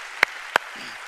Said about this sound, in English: Today is the official launch, and so church family, can we just by a round of applause, just tell them how much we are grateful for you guys. Amen.